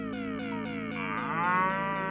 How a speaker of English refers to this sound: Son, this calls for something different. First, I'll let Seabiscuit the cow here free.